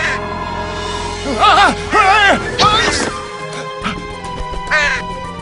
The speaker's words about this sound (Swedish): Hörrni, se upp! Det är en kråka lös här! Han ser hungrig ut!